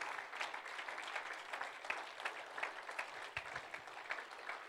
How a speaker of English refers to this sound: Let's clap our hands unto the Lord right now, Mission Point Church.